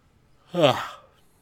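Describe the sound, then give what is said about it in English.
A single breathy yawn rises and trails off over about half a second, a drawn-out voiced exhale with no words spoken. “No yawning on us.”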